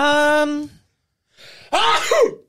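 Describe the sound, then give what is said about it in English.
A single loud sneeze: a drawn-out voiced 'ah' breath, a brief pause, then a sharp, breathy burst that trails off. “Sorry, I need to sneeze.”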